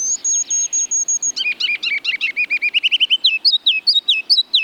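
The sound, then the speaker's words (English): A ruby-crowned kinglet sings: high thin notes, then a rapid run of bubbly, rolling chirps and a final series of bright, sweeping phrases, all clear with no talking. “Ruby-crowned kinglets are leaving the northern evergreen forests where they nest on their way to milder climates.”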